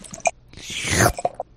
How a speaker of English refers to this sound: The sound of pouring a beer is actually really satisfying.